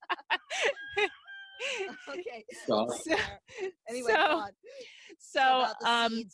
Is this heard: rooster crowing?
yes